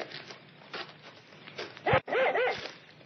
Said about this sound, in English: Here, what's the matter with your dog? Well, he seems to have found something ahead there. Well, it's not like him to get that excited.